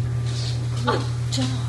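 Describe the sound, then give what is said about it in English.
A dog, just told to sit and with something put on its back, gives a short, high whimper that dips in pitch, with light shuffling movement, over a steady low electrical hum. “Good dog. Good dog.”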